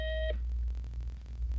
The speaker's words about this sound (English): Beep, beep.